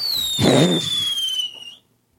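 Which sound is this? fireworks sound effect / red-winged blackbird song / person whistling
fireworks sound effect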